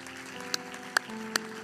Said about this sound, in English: Thankful to be in the hand of the Lord this morning, aren't you? Would you clap your hands one more time to Jesus?